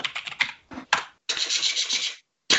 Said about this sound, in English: Also, I've got a mechanical keyboard.